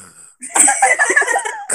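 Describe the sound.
A person imitates Darth Vader's heavy, mechanical respirator breathing with a single long, raspy, hissing breath, fairly loud, with no talking over it.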